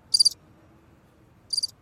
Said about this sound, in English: It's a cricket singing in the back of an alley.